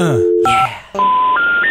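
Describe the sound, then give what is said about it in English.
Touch-tone telephone dialing: a short electronic dial tone cuts in, then after a brief gap three steady beeps climb in pitch, loud, like a phone line. “Omar can't dial a phone.”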